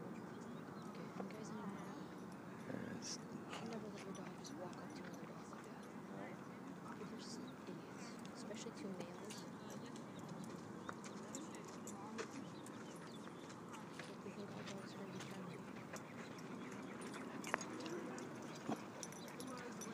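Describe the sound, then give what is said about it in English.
Dogs whimper and play throughout, with high whines, short yelps and steady scuffling and clicking noises filling the background at a fairly even level. “Be nice to each other, doggies.”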